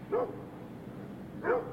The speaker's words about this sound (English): And what about that? That's a dog barking, isn't it?